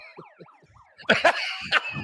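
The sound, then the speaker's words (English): A wailing alarm siren at the Sportsline office sweeps rapidly up and down in pitch several times, then gives way to loud, harsh, noisy blasts that pulse in short bursts. “And if that were to happen, let me tell you what would happen at the alarms here at the Sportsline office.”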